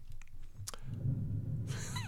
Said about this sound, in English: That sound was Russ pushing his beer away from him. He just made a nonverbal gesture, his opinion of the beer.